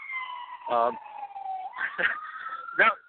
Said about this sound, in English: Yeah, I apologize. There's an ambulance going by just as you cut to me there.